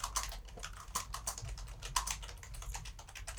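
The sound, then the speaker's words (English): Rapid, continuous clacking of keys on a computer keyboard, fast and irregular like frantic typing, with no voices. “Furious typing.”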